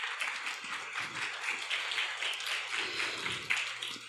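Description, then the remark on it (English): An audience applauds Dr. Austen Ivereigh after his talk on Catholic social action, a dense, crackling wash of many hands clapping at once, holding an even, fairly loud level throughout without any voices. “Let's give another round of applause to Dr.”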